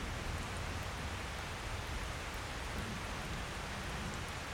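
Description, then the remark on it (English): Steady rain falls continuously on a wide open path, a dense, even hiss of drops spread across the whole sound with no pauses and no voices, fairly soft overall. “Let yourself through the raindrops dripping off your eyebrows.”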